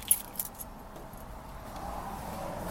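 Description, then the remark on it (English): A few quick metallic jingles of car keys being grabbed to avoid locking them in the car, with bright clinks in the first half-second, then settling into a quiet, steady background rumble. “I should grab my key because I certainly don't want to lock the key in the car.”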